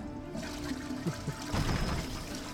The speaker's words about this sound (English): Oh man, continuing our, I always forget how long the flush is.